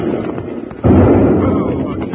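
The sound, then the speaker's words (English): A bomb shot off from a balloon explodes with a sudden heavy boom partway through, breaking over a low background murmur, then a loud, rumbling roar that carries on without fading. “Yeah, and somebody's shooting off bombs from it. There it goes again.”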